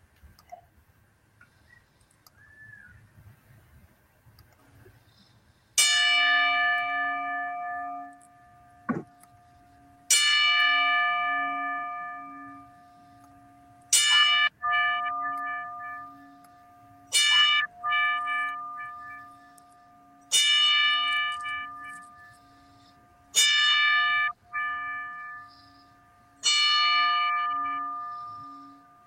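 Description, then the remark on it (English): A bell tolls slowly and repeatedly, each loud, clear strike ringing out and fading before the next, spaced a few seconds apart with no voices: a ten-bell salute honoring the passing of wrestler Shad Gaspard. “So we wanted to do a quick 10-bell salute for him to honor his passing.”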